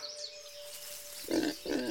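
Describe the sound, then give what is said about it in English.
Two short, low grunts from Piggy Pig, one after another with a brief gap, over a faint steady tone and soft background birdsong. “Oh, hello, dear friends. Dearest Deer and Piggy Pig.”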